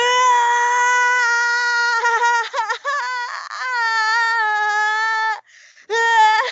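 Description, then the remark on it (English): A tabletop role-playing player lets out a long, loud, wavering high-pitched scream in character as Nichka, who keeps shooting a creature in the face; almost like a wail, it breaks off for a moment, then comes again briefly. “She just continues to shoot it in the face while just screaming.”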